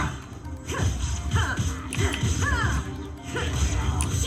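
A video game shattering effect, a dense crash with glassy swooping tones rising and falling over roughly four seconds, set against a steady, busy background din.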